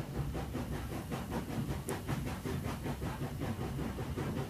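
A train travelling from Paris to Normandy rolls steadily along the rails, its wheels clacking in a quick, regular rhythm over a constant low rumble and hiss. The sound is even throughout, with no voices.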